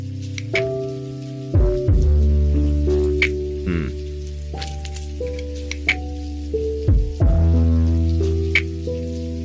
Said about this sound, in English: Also, it's like raining in the background for some reason. It's like I pull up lo-fi hip-hop radio beats to sleep / chill to and I get a steady downpour.